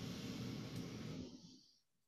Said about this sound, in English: we'll do our usual breathing that we do. So we'll do four in, and then we'll do four out. So we'll do four in now, so.